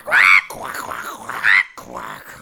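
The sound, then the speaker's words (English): Loud, raspy quacks from two ducks bellowing at the exact same time: two harsh, nasal honks about a second apart, with a rough, gravelly rasp continuing between and after them and no talking. “They stared down Cornelius and, at the exact same time, let out a murderous bellow of a quack.”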